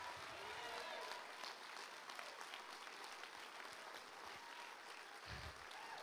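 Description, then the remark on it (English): An audience, standing on their feet, claps hands together, a dense, steady wash of applause lasting several seconds with no clear individual beats, accompanied by faint crowd murmur. “Clap your hands and say, I'm standing.”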